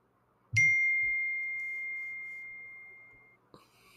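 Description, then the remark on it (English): A phone's text message notification: a single bright chime that rings out and fades over about three seconds, clear, followed by a soft knock. No one speaks. “That was for sure a text coming in on my phone. I forgot to silence it.”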